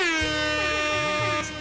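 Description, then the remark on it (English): A loud, sustained air horn blast with dense stacked harmonics, wavering in pitch as overlapping horn tones sound continuously for nearly two seconds. “Hey, where's some more motherfucking air horns real quick, man?”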